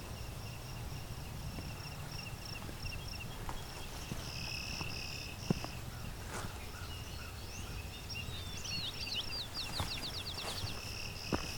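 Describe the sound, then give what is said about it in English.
A clay-colored sparrow gives a few low-pitched, flat, insect-like buzzes in a row, fairly faint against a breezy outdoor background, with a quick run of chipping notes from another bird near the end. “Alright, it's kind of a low-pitched buzz, buzz, buzz. That's clay-colored sparrow.”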